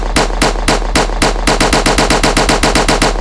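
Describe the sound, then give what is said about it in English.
Loud gunshots crack out in a rapid string, a few spaced shots at first, then quickening into a steady automatic burst of sharp, evenly timed blasts over a low, constant rumble. “Somebody bust a shot for your true friend.”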